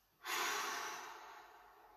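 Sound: deep breath out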